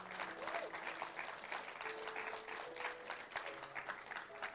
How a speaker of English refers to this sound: Let's give Jesus Christ a hand clap of praise.